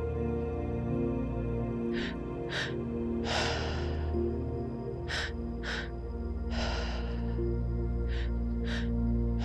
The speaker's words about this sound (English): Many of us start off in a quicker pace, and you may find that as you relax in, you also slow down and open for more softness. So go ahead and start breathing.